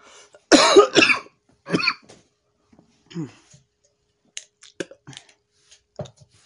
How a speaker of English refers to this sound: I might have to go in because of my cough. Because it could develop really ton bad. If it gets bad, I will have to go in.